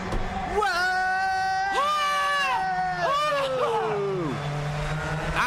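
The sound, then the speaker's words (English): Race car engines whine loudly and continuously, their pitch sweeping up and down as several cars rev and pass, over a steady low rumble of crowd noise. “And car number 23 is the winner!”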